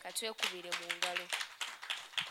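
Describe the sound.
An audience breaks into quick, steady applause for themselves, many hands clapping together at a fairly loud level, with a raised voice heard briefly at the start.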